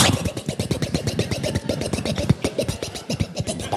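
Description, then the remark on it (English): A ski boat engine cranks and turns over, a loud, rough rumble of rapid uneven pulses with a scratchy, rattling edge, heard alone without talking. “I'm going to start out the boat.”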